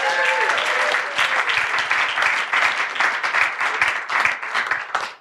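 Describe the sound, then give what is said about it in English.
An audience bursts into sustained applause as a speaker is introduced, dense overlapping claps at a steady loud level for about five seconds before tapering off quickly at the end, with a few faint voices mixed in at the start. “Please make some noise”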